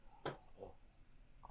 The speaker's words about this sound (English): Just gonna have a sip of my coffee.